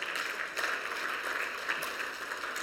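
A crowd applauds steadily, a dense wash of many hands clapping at once with no pauses, holding an even, moderate level throughout, giving a round of applause to a man who helped with the plumbing work.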